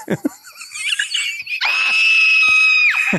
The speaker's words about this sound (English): Laura, just as scared as Rob, says, I heard a scream. A scream? It sounded like a little girl. I heard a little girl scream.